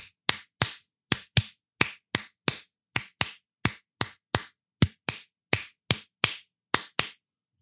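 Hands clap out a rhythm at a faster speed, a quick, steady pattern of about twenty sharp, bright claps in under eight seconds, some falling in close pairs, with no voices.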